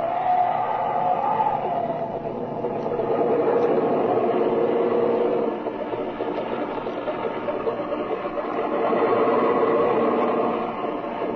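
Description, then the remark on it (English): A small airplane engine drones steadily while taxiing up to a hangar on an airfield after landing, a continuous mid-pitched rumble with a slight waver in its tone and no voices over it. “Taxi up by that hangar”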